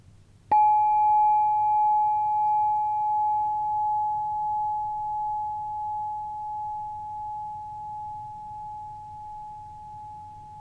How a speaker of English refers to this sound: And I invite you to join me as I ring a bell for everything that's happening.